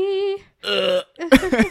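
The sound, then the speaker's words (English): A voice holds a steady sung note, then lets out a few loud, deliberate coughs that keep a musical pitch, ending in two or three short voiced bursts. “Can we cough on key?”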